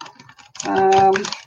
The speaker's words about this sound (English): So I am going to go ahead and do a shuffle. I usually like to shuffle three times.